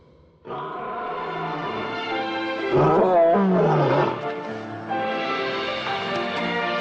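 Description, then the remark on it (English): A juvenile lion roars in a long, sustained, harmonically rich bellow, loud, swelling in the middle with a wavering, strained peak before settling into a steady drawn-out tone. “Juveniles rarely roar, but when they do, it's often full of meaning about their pride, their alliances, and strengths.”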